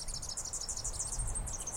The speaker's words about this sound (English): And indeed, there is a perfect match. Birdsong.